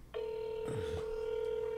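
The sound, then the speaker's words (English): An electronic telephone ring starts abruptly and holds as a steady, bright tone, fairly loud, with a brief rustling knock partway through; it is a second household phone ringing because someone is calling it from another phone. “Oh, our phone's ringing.”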